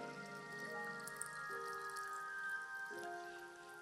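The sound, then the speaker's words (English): Water pours steadily into a container, its ringing tone stepping upward in pitch as the vessel fills over a few seconds; fairly quiet, with no talking. “The water took shape to the contour of the container that it was in.”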